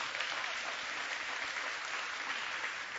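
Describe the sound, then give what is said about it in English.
Steady audience applause for volunteers fills the whole stretch, a dense wash of many hands clapping at once with no pauses and no voices over it. “Give my volunteers a big hand clap.”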